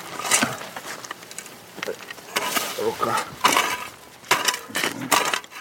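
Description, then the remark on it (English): Two people dig into soil with shovels to unearth a buried body after the ground is checked for mines, making a series of irregular gritty scrapes and crunches that come in uneven bursts, some sharper and louder than others. “He declares it safe to work, and Yura and Volva start digging.”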